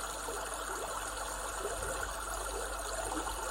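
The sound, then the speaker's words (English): A steady wash of brook water tumbling over stones, a continuous bubbling rush with no pauses and no voices, fairly quiet and even throughout. “Focus on the way the water is rushing over the stones, constant, and yet the sound is changing and varying slightly.”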